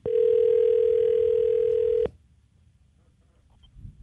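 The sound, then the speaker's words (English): A steady telephone tone, heard while dialing a phone call, holds one unwavering mid pitch for about two seconds, then cuts off abruptly, leaving only faint low background noise with no talking. “So let's dial her up and get a little more background, shall we?”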